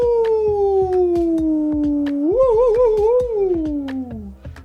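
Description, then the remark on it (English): A voice imitates a wolf howling at the moon, letting out one long howl that slides downward, rises into a wavering warble, then trails off low, over a steady tapping beat in the background. “That was some wild howling.”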